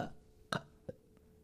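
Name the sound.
burp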